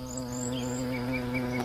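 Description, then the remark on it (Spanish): A bee buzzes steadily, a continuous droning hum that holds its pitch throughout, with faint high chirps in the background and no voices. “Volar, volar y zumbar. Buenos días, amiga abeja.”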